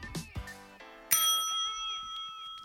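A single bright bell rings out with a sharp strike, then its shimmering, wavering overtones hang and slowly fade. A few short, muffled sounds come just before it.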